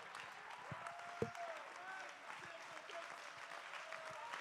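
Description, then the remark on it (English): A crowd applauds steadily, a dense wash of many hands clapping at even loudness throughout, with a few faint voices and a brief louder clap standing out early on. “Come on, somebody, clap your.”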